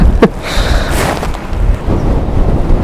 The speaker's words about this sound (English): Yeah. Even though it's windy.